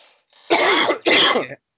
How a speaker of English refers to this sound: he coughed. That'll stay in.